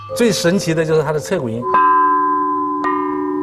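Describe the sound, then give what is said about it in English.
After a brief voice, a bronze chime bell is struck hard with a hammer, ringing out with a long, bright sustain, then hit a second time as the tone lingers. “To a layman, playing the chime bells looks easy, where you use a bell hammer to hit the chime.”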